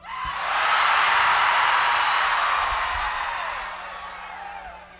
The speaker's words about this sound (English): So when you see that, you'll know to scream like you're being swallowed by a whale.